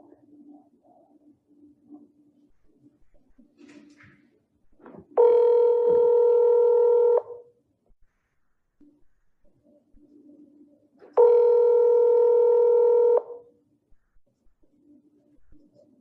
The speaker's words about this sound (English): And I am calling Chad Daybell's phone number. And hopefully I will be talking to both of them, Chad and Lori. So here goes the phone call.